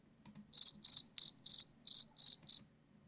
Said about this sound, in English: I don't know why you did crickets there.